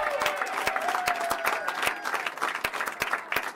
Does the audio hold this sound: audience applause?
yes